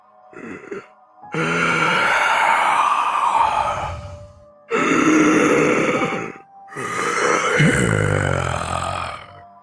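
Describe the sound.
A voice imitates the deep, heavy breathing of a huge, old, ancient creature: three long, loud, rasping groan-like breaths, rumbling, after a brief short huff, with no talking.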